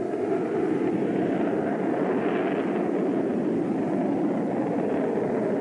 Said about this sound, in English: We're now in contact with an airborne command control airplane and are scrambling jet interceptors to identify this unknown track.